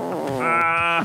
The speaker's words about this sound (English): Hey, where's the fart sound? Play the fart sound.